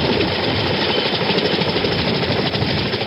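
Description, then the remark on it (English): A helicopter roars loudly and steadily overhead during an evacuation from the American embassy, its dense engine and rotor noise filling the whole stretch without pause. No voices can be heard. “Marines used smoke to signal helicopters they should land on the lawn behind the embassy walls, where they would be protected from ground fire.”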